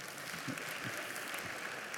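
An audience claps steadily in a dense, continuous round of applause, many hands overlapping into a bright crackling wash that stays even in volume throughout.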